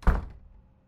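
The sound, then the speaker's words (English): A single solid thud of a door shutting, fairly loud, with a deep low rumble that fades quickly into quiet. No voices. “Open door or closed? Closed.”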